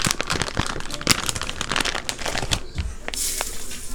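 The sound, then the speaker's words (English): Bacon frying, a steady sizzling hiss peppered with dense, irregular crackling pops throughout, with no voices. “Hear that pop.”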